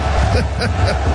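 A loud, steady roar of a large crowd in Kansas City cheering wildly as the Chiefs and Travis Kelce score, a dense wash of overlapping voices with no pause for over a second.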